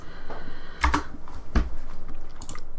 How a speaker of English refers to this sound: I'm sorry for typing right into the microphone here.